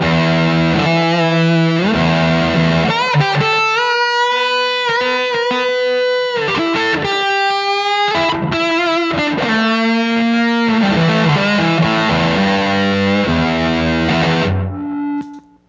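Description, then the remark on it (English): Electric guitar through a Pete Cornish P2 fuzz pedal, a ram's head Big Muff-style fuzz, plays sustained, singing lead notes with bends and slides. It is loud and saturated with no talking, then cuts off abruptly near the end. “And so the P2 is like a kind of a ram's head big muff type of thing.”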